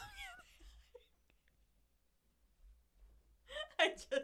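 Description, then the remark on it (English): A person yawns, a drawn-out, wavering vocal sigh that trails into quiet, followed by another short burst of breathy voiced sound near the end. “I happened to yawn.”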